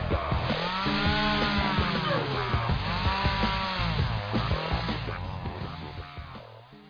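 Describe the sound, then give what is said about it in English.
A chainsaw engine revs continuously, its buzzing pitch repeatedly surging and dropping in loud waves before easing slightly at the end. No one speaks. “Damn, look at the size of that chainsaw.”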